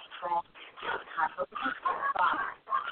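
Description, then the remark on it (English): Dogs bark in a run of short, uneven bursts through the whole stretch, moderately loud and slightly muffled, with people talking over them. “You're getting ice cream and my dogs are barking.”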